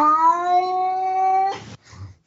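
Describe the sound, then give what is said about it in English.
A single drawn-out, tonal wildcat meow holds steady for over a second, then breaks into two short, harsh, hissing bursts. It is fairly loud, with no talking. “you hear my laugh more than your meow. And then this is the YouTube one. Arizona Wildcat.”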